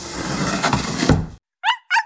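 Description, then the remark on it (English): A storm window on a first-floor window of a house slides open with a steady, rough scraping rush lasting over a second, then stops abruptly; after a pause, an animal gives two short, high-pitched whines. “Oh, wait, now I have to get the storm window.”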